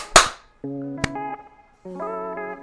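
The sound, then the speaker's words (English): A loud, slightly smeared burst of clapping as several people clap together on a count of three to mark the start of a recording, followed by a single sharper clap, while steady electronic-sounding tones hum underneath. “Do is we can all do a clap.”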